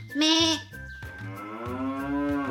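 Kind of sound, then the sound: animal, cow mooing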